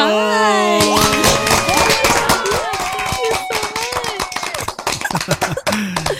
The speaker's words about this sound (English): Wow. Those are real claps, by the way.